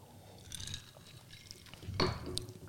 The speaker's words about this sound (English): Hold on. I got to take one more sip.